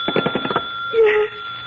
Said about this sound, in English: The phone, Matilda. Hadn't you better answer it?